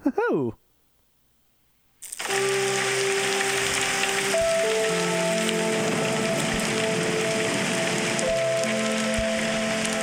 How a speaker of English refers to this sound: This one is called Melodic Rain and Thunder